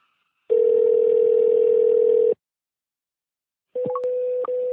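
A steady telephone dial tone hums for about two seconds, falls silent, then returns with a few quick beeps and clicks as a call to the WWVH time station dials and connects; no one speaks.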